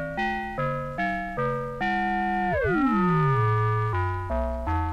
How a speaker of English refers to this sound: Modulator produces very rich, complicated sounds by combining two simple raw signals in a special distortion circuit.